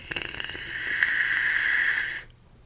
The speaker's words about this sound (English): I am getting a bit of gurgle happening in here, and I'm hoping that I can vape through that.